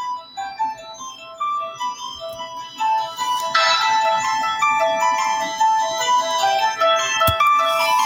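An eerie instrumental with a repeating, bell-like keyboard melody of high chiming notes; around midway a fuller layer of sustained tones joins, making the music louder and denser. No one speaks.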